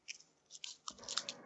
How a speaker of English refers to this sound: Is someone opening a Werther's Original? It's funny that you say that, because I just bought those yesterday. Those are delicious.